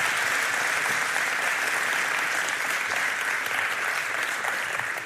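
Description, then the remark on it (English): An audience applauds the panelists steadily for about five seconds, a dense, even wash of clapping that holds its loudness throughout and tapers off slightly at the very end. No one speaks over it. “Give a warm round of applause for my panelists.”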